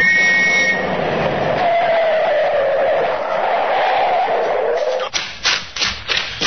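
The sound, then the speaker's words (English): A car roars past at speed at night, its engine noise sliding downward in pitch as it brakes hard, followed by a few short, choppy bursts of sound as it comes to a halt, pulled over by a police constable. “I know that car. Never saw him drive like that before.”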